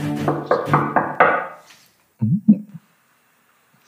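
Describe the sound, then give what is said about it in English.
A quick run of about five fairly loud knocks on a wooden door, followed by a short pause and a brief muffled voice. “I'm going to knock on the door.”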